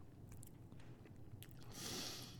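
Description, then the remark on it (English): Quiet chewing with soft wet crunches and squishy mouth sounds, a few scattered bites followed by a brief louder stretch near the end. Nobody speaks. “After the first couple chews, you're like, oh gosh, what is this taste I have in my mouth right now?”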